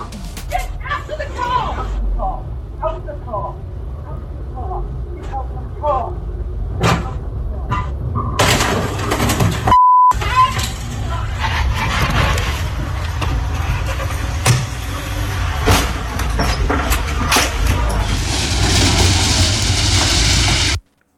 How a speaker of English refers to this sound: Then the car starts reversing whilst the door's open and they're trying to get the person out.